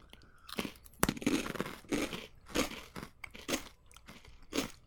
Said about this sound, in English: It's shaped like a taco. All right, let's try it. Right? It's like a taco shell. Wow, very crunchy.